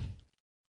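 A video game door slides open with a single short, heavy mechanical thunk, deep, fading out within half a second into silence.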